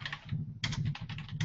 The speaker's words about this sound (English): Oh wait. Hey, how much can you hear my typing? I hear it now. Like a lot? Not a lot, but enough. You need to get one of those silent keyboards.